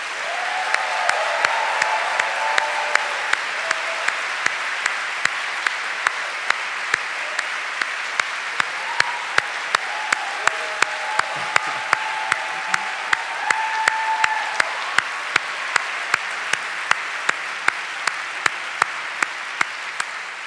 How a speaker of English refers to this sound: Could I ask all of the graduates to give a rousing applause for those who helped get you here today?